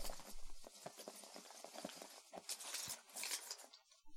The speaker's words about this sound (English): All right, I'm unfolding the paper.